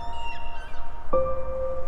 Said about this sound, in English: While breathing slowly and deeply, you hear the soft call of a seagull.